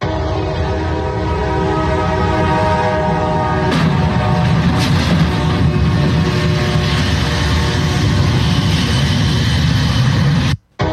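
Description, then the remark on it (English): A train horn blares over loud rumbling in the center of a small town, then at about four seconds the train hits a big, long trailer truck with a sudden violent crash of metal, followed by continued grinding and roaring noise from the collision. Very loud. “you'll know when the train hits the truck”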